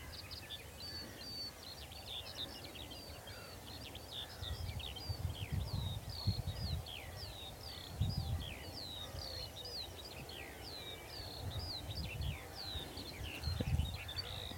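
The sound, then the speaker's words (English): Many birds sing together in a steady dawn chorus in rural Dorset, a dense layer of high chirps, trills and whistled phrases, with a soft low rumble of distant main-road traffic and occasional muffled thumps underneath. “A gentle nature ramble in rural Dorset – with a magnificent dawn chorus”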